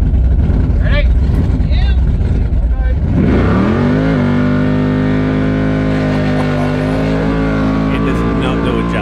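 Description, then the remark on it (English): From inside a car cab, a burnout: after a busy, rumbling start, the engine revs sharply upward, then holds a loud, steady, high-pitched roar with strong droning tones until the end. “This is a little bit of audio from it. I did video it from inside the cab”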